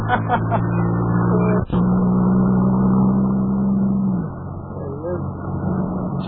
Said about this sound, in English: Well, he's stopping his car. He's stopping his car, fellas.